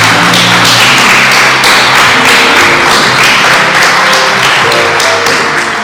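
A crowd applauds steadily for several seconds, dense and loud throughout, with a faint low tonal hum underneath and no talking.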